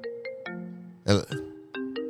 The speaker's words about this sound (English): We got another phone call. What? I'm sorry. I guess I did have my phone here with me.